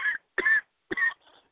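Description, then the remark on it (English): A person clears their throat in three short, raspy bursts spaced evenly apart, with the last one trailing off softer and breathier. “In the name of Jesus, God, we thank you for clearing my throat and to finish this prayer.”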